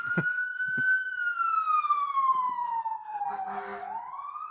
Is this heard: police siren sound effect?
yes